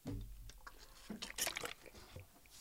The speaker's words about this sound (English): Shouldn't pour that water over myself.